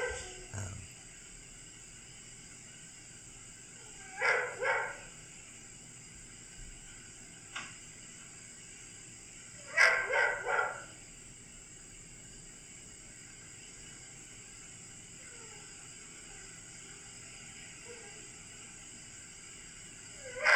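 A dog barks in short, sharp bursts separated by long pauses: a pair of barks, a lone yip, then a quicker run of three or four, all over a steady background hum.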